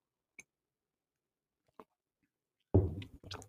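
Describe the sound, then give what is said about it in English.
Someone takes a little sip of coffee in the morning: two faint, isolated clicks are followed after a pause by a louder, noisy slurping gulp with a breathy, throaty finish. No talking. “I just needed to take a little sip of my coffee this morning while I have my oatmeal cooling down.”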